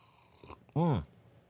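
A single loud slurp of hot coffee from an Asylum 817 coffee mug, a short sucking gulp with a rising then falling pitch, heard on its own with no talking.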